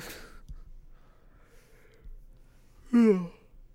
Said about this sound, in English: As I yawn, unfortunately, sorry guys.